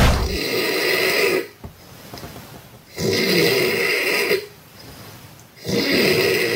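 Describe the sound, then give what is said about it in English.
A person snores loudly after a few drinks, three raspy, rattling breaths in a slow, steady rhythm with short quiet pauses between them, and no talking; recorded outside a tent while camping. “And the other one is the one we recorded when we were camping.”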